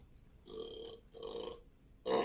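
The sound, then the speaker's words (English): A series of low, croaky burps made off to the side of a microphone, two drawn-out ones followed by a louder, abrupt third, with no talking. “Burps to the side of the mic.”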